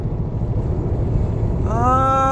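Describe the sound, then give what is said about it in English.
Steady low rumble of a car driving, fairly loud, with a rising engine whine joining near the end; the drone has a slightly uneven, shaky wobble from the car needing a front-end alignment. “Whoa, what is this wobbling shit? What is this?”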